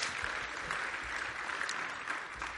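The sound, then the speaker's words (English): An audience claps together in a steady, dense burst of applause, a bright crackling wash of many hands at an even loudness throughout, with no voices standing out. “Can we get a round of applause for them?”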